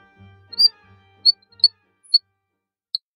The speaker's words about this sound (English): They don't have the same call over and over again. They're saying all sorts of weird, clicky, chirpy, whistly things. They definitely say more than your average frog. The frog that sings like a bird, its scientific name is Chrysixylus quangi.